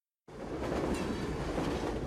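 A train rumbles loudly along the rails, starting abruptly after a brief silence and holding a steady roar of rolling wheels and clattering cars with no voices.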